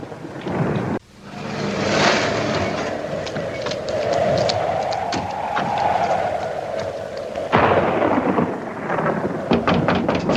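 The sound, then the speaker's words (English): Heavy rain pours steadily while a deep roll of thunder swells and rumbles across the middle, with sharp crackling bursts near the start and end. No voices are heard. “It was probably just the lightning in the storm”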